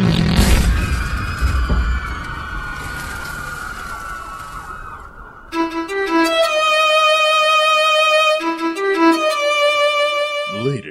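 A loud explosion, methane from swamp gas bombs ignited by sparks from a boat crash, bursts at the very start and its rumble dies away over several seconds; then a wailing siren with bright, stacked tones rises and carries on to the end.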